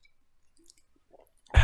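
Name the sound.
sipping water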